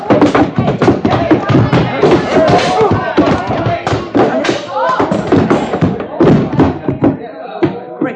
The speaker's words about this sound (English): But you knocked him out. Yeah. Ain't it a shame.